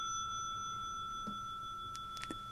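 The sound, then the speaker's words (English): A brass bicycle bell rings out, its clear metallic tone sustaining steadily through the whole moment, fairly quiet, with a few faint knocks and no voices. “On my best bike, I have the brass bell.”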